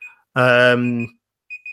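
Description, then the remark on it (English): An alarm clock beeps with short, high electronic tones, one at the start and a quick pair near the end, with a sustained voiced sound in between. “Oops, sorry. Alarm just gone off then.”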